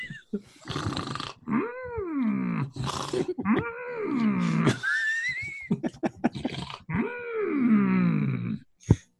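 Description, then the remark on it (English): A voice imitates Yoda loudly snoring, asleep during a Jedi Council meeting, with three drawn-out, rumbling groans separated by breathy snorts and short gasps, exaggerated, ending on a sharp click. “Snoring, I was.”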